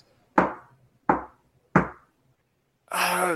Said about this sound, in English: I guess wait. So there's a knock. Is it like just a regular knock?